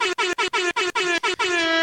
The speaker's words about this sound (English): He then found an air horn.